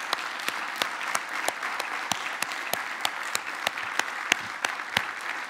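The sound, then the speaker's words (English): A church audience claps steadily for their church family, a dense wash of applause with sharp individual claps popping out irregularly throughout, sustained at an even, moderate level with no speech. “And so can you give just your church family, listen to it on the screen here, can you give a great applause for everybody for what you did?”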